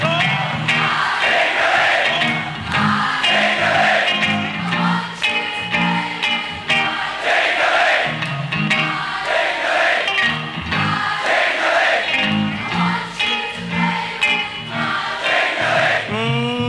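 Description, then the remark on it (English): A large audience sings along loudly in unison, many voices blending into a sustained, rhythmic chant that rises and falls in steady phrases for the whole stretch. “Your parliament out there singing?”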